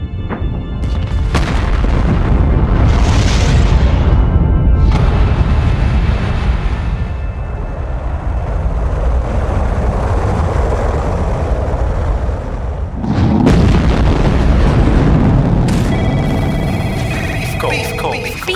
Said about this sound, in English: Ten, nine, ignition sequence start.